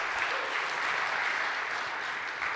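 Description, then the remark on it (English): A church audience claps steadily for a few seconds in response to being asked how many were blessed by the sermon series, a dense, even patter of many hands with no pauses and no voices standing out. “I know I was more blessed than how much you were clapping, so I'll just add that to it.”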